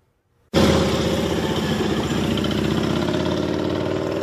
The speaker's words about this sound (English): In West Fargo, dozens of bikers took off from the VFW for a good cause, raising money to support homeless veterans.